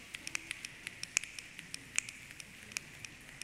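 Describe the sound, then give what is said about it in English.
Scattered, irregular finger snaps from a group, many overlapping and uneven in timing, make a light pattering like the first sprinkles of rain, part of a thunderstorm the group creates together with their bodies. The sharp, bright clicks come at a quiet level, and no one speaks. “And now we're going to snap. You hear the sprinkles?”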